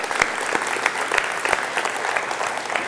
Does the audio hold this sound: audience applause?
yes